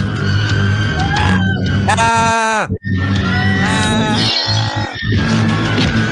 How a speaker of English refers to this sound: I'm going to ask you to crank it up because you're going to hear the hysteria now of the crowd. Once he pulls out the gun, look, everyone's here. We go. Kick. Listen to the background.